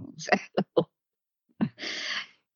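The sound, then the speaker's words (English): A few short, breathy vocal bursts lead into a single sharp sneeze: an abrupt onset followed by a loud, hissing, noisy release that fades after about half a second. “Bless you.”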